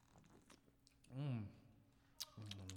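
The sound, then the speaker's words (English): Wet mouth sounds of someone sipping and swallowing a freshly opened German Pilsner beer: small clicks and slurps, then a throaty, voiced gulp, and a final soft swallow at the end. “Thanks for the reverb on the drink there.”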